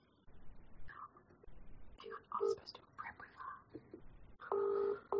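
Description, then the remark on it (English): A string of short electronic touch-tone beeps as a phone number is dialed, followed by a longer steady ringback tone, with faint murmuring voices in the background. “A quick phone call here.”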